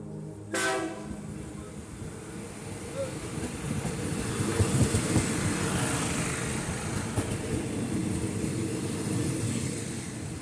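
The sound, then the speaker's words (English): A passenger train rumbles steadily along the rails, a brief horn blast sounding at the start before the continuous clatter and roar swells slightly louder and carries on without pause. “Travelling by train affords you time to just watch the world go by, read and reflect.”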